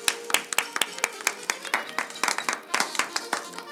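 A short round of applause: sharp, distinct hand claps in a quick, fairly steady rhythm, sounding like only a few people clapping, moderately loud throughout with no talking.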